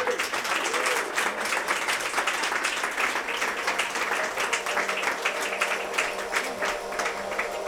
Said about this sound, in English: And let's give a round of applause for her.